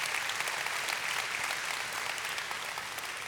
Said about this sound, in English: She did good. Yes, you can clap for her. She did excellent.